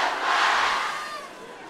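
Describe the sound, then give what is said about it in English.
A crowd of about 2,000 people on a Wednesday night screams "up the flats" together on a count of three, many voices merging into a bright roar that swells and then slowly fades over under two seconds. “Even if you're not from the flats, I want everyone to scream up the flats on three, right?”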